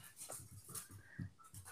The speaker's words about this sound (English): Hold on, my dogs are freaking being stupid. Stop! They're literally running around. I can hear their...